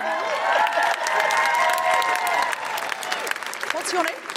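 A crowd claps and cheers for a woman from the audience who has come forward to the stage, dense applause with whoops and shouts layered over it, holding at a fairly loud level throughout before thinning slightly toward the end.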